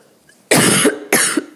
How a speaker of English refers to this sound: Okay, starting to cough a lot. I'm so stuffed up.